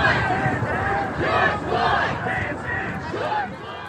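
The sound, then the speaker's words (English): A large crowd at a mass peaceful Black Lives Matter demonstration in Portland, in honor of George Floyd, chants and shouts together in loud, rhythmic bursts, many voices merging into a dense roar that swells and dips every second or so. “The mass peaceful demonstrations.”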